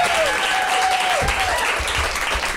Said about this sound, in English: Let's go, big round of applause for our guests, Justin Hamilton and Will Anderson.